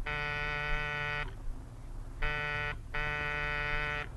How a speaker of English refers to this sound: Oh, ring again, sweetheart. They must be home. There's a light out in the living room. Well, they could have gone off, forgotten. Oh, go on. Buzz the buzzer.